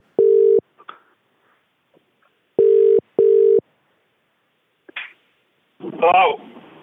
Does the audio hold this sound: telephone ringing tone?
yes